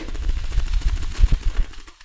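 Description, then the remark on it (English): A voice imitates a helicopter with a steady, rapid chopping rhythm of low, breathy thumps that runs for about two seconds before trailing off. “Do you want to hear my impression of a helicopter?”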